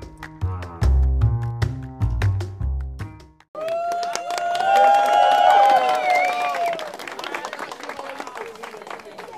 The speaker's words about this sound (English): Cue in the applause.